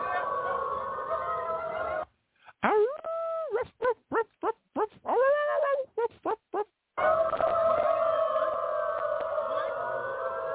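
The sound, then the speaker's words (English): A crowd of about 1,000 people dressed as dogs in Berlin, Germany, barking and howling like dogs, a dense chorus that breaks into a run of short, sharp yelps and barks before swelling back into a loud, continuous din. “One 1,000 people dressed as dogs, dog faces, identifying as dogs in Berlin, Germany, gathered together.”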